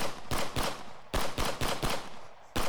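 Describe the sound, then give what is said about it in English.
A rapid series of sharp gunshots from live ammunition cracks out in irregular bursts, two quick shots, then a tighter volley of several more, a pause, and one final blast. No voices are heard. “Live ammunition! Get out of the way!”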